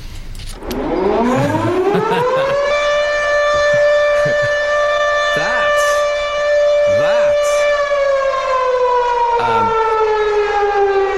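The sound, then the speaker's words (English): A fire alarm siren winds up from a low growl to a loud, steady wail, holds its pitch for several seconds, then starts sinking slightly at the end, with a few brief knocks underneath. “But I thought if I press that while the fire alarm's going on, the whole place might fold in.”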